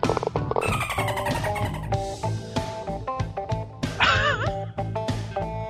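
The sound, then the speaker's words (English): Upbeat music with steady piano-like chords, interrupted near the end by a dolphin sound effect: a short, high, warbling squeal that wavers up and down like a dolphin's chatter, loud over the backing. “Okay, it all sounded kind of normal until I got the dolphin sound at the end.”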